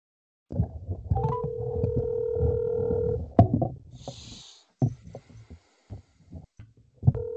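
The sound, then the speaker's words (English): Telephone tones sound over a low rumble as a call is placed to a contestant in Oshkosh, Wisconsin, with a steady dial tone held for a couple of seconds, then a brief bright ring and a few scattered clicks and knocks. “And, we're going to give him a little call here, all right?”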